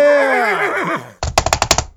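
A horse's loud, wavering whinny falls in pitch and fades, then a rapid burst of about six sharp gunshots cracks out in quick succession, a sound effect for Texas the psychic horse storming into town with a shotgun. No voices are heard.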